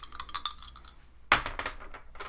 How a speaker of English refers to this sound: That was an 8. Yeah, why were you rolling with my dice at all? Your dice are very good for you. My dice are better for me, though.